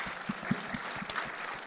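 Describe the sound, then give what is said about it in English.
Audience applause: a steady patter of many hands clapping at a moderate level, with irregular overlapping claps and one sharper clap standing out briefly, no voices speaking. “Yeah, you can clap the...”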